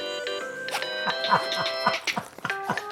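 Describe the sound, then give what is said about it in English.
A phone rings with an electronic chiming ringtone, a melody of sustained bright tones that repeats steadily, while people talk briefly underneath as its owner goes to answer it. “answering her phone, we'll go to commercial break and we'll be back in just a minute.”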